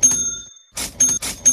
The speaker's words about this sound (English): I just can't get enough of that cash register, damn it.